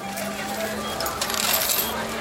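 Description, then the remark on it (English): Busy ambience of Shinjuku station in Tokyo, the world's busiest train station, in a soundscape by Sarah Peebles: a steady wash of crowd murmur and footsteps over a low electrical hum, with scattered metallic clinks and clatter rising and falling throughout. “Sarah Peebles created this soundscape of the hustle and bustle of the Shinjuku station in Tokyo.”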